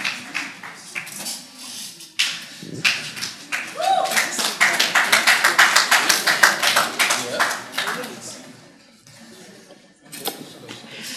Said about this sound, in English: Alright, let's just applaud them once again as they have their seats.